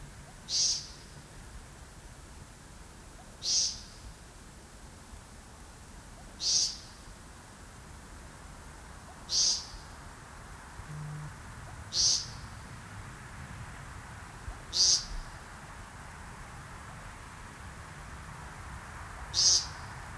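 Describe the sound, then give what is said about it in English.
A woodcock's buzzy nasal peent repeats seven times at steady intervals of about three seconds, close and clear against a quiet evening background in cold, wet air, its tone subtly shifting from call to call as the bird slowly rotates while calling. “Woodcocks will slowly rotate while painting, and from this close, I could clearly make out changes in tone as the bird turned.”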